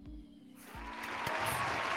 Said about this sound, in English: Is that your own clap track? Yes. He's clapping to himself.